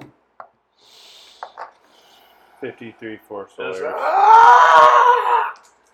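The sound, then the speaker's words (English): After a few short choppy vocal bursts, a man lets out a long, loud, strained scream lasting about two seconds, apparently performed by a voice rather than a real cry. “He just starts screaming.”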